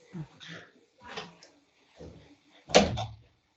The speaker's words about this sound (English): Excuse me, let me just close the door. There's somebody.